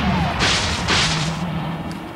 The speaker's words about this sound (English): Here we see Jackhammer transforming into tank mode, and it's blasts the airboat again, with Alex commenting that their ride home went up in smoke.